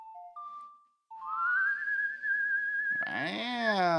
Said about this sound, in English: Wow! Listen to that whistle.